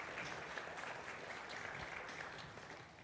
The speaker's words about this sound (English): And let's give this group a round of applause, right? Leading us in worship, doing great.